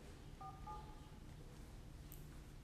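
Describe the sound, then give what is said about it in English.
A couple of quick telephone keypad beeps as a phone number is dialed, dual-tone presses in fairly close succession, over a steady low hum of background noise, with no one talking. “All right, see if I'm calling you.”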